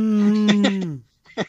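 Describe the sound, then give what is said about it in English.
A man gives a drawn-out, low mooing call in imitation of a cow, holding steady for about a second before it sags and fades, followed by a brief burst of voice. “Like, I'm a man cow.”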